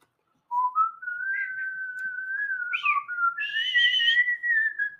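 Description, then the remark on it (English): A penny whistle plays a slow, smooth solo melody of sustained, gliding notes, clear, starting after a brief silence and continuing without any talking. “The penny whistle solo from ….”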